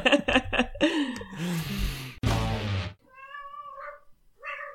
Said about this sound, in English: Hello, cat. What's happening to the cat? She's just very excited. Yeah. That sounds like a dog. Are you sure it's a cat?